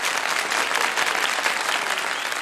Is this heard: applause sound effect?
yes